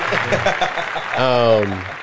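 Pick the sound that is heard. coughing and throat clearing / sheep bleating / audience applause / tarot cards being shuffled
audience applause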